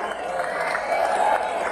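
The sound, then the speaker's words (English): A virtual crowd cheering sound effect: a steady, loud wash of many voices roaring and whooping, with no pause or letup, swelling slightly toward the end. “Welcome back to my house, where the virtual crowd is really getting crazy out there.”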